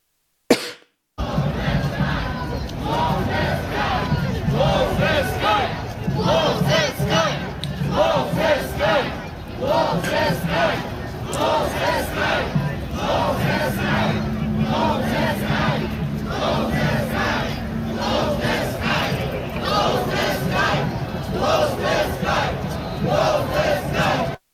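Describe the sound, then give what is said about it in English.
A large marching demonstration crowd calls for a no-fly zone over Ukraine, chanting "close the sky" loudly in rhythmic unison. The repeated slogan rises and falls steadily for over twenty seconds, with scattered shouts and coughs mixed into the dense roar of voices. “I mean, there's been demonstrations where people are marching and saying, close the sky. I'll just play part of a demonstration.”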